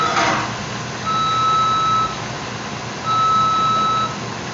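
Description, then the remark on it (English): Two long, steady electronic beeps at a McDonald's, each about a second, sounding at an even pace over a low background rumble with a short burst of noise at the start. “Beeping. That's McDonald's, y'all.”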